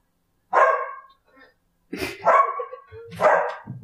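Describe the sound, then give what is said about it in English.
Dogs, one of them named Zoe, bark back and forth, three loud, rough bursts separated by short pauses, sounding like an agitated squabble between them. “Dogs are absolute bitches to each other.”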